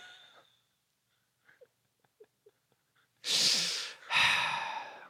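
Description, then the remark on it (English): Two loud, raspy coughs, each with a wheezy, strained edge, preceded by a few faint clicks and breaths in near silence. “Oh, I'm sorry. This cough.”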